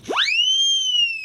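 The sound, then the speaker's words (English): A person screams through a whistle: a shrill blast swoops sharply upward, then holds a steady, piercing high pitch for about a second. It is loud and sounds alone, with no talking. “You go in the room, you scream through the whistle.”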